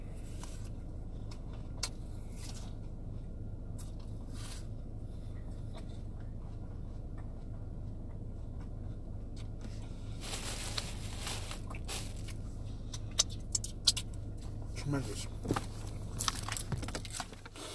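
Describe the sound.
Crisp, crunchy bites into a Gala apple followed by wet, irregular chewing over a steady low hum, with one short spoken word partway through.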